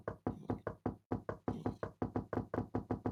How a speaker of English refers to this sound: And then suddenly, there's a knock at my door.